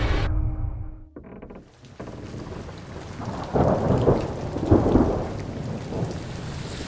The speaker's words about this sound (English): It's a rainy night.